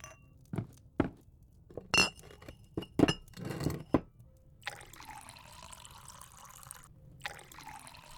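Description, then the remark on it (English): Several sharp glass clinks in quick succession, followed by a steady stream of homemade moonshine pouring into glasses with a bright, gurgling trickle, fairly clear, with no talking. “Sam complied and poured two glasses of her latest batch.”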